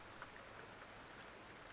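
Soft, steady rain falls at night with an even, continuous hiss and faint patter, low in level and unchanging throughout, with no voices.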